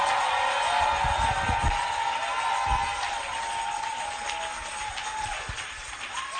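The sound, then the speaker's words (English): An audience claps continuously to give God praise, a dense steady wash of many hands with a faint murmur of crowd voices mixed in, holding at an even, fairly loud level throughout. “Somebody clap and give God.”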